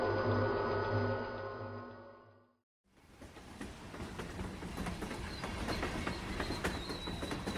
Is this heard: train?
yes